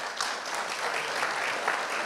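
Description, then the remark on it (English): An audience applauds a panel at the end of a panel discussion, a dense wash of many hands clapping at an even, sustained level throughout, with no voices standing out above it. “And can we just have a really big round of applause again for the whole panel?”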